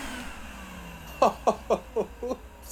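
A hoover's motor drones and winds down in pitch as it's switched off during spring cleaning aboard a space station, after dragging its user around and sucking up space tools; then a short run of five quick, rhythmic chuckle-like voice bursts follows over the fading hum.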